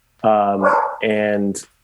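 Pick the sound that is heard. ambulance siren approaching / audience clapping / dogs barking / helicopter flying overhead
dogs barking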